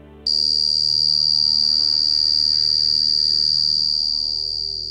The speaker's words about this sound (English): It seems bug-like, not quite the grating metal that some described. And actually, some believe it is bugs. Short-tailed crickets, to be precise. Take a listen to this.